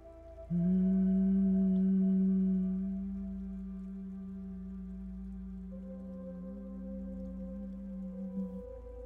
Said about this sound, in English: And take a big breath in and a big breath out. Take another inhale, and as you breathe out, start to make a humming sound, something like this.